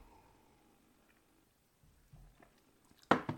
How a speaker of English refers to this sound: And let me have a drink of water.